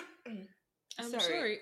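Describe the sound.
A short vocal grunt, a brief pause, then a deliberate, forced-sounding cough with a raspy throat-clearing quality, fairly loud, trailing into a voiced hum.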